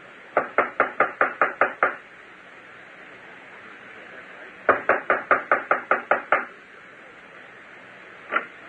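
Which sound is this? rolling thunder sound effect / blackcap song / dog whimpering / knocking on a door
knocking on a door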